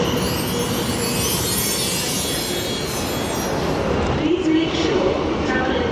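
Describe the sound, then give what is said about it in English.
A train from Waterloo rumbles steadily along the rails, a dense continuous roar with rattling underneath, while muffled voices talk faintly beneath the noise. “why are we getting this train from Waterloo rather than your flat?”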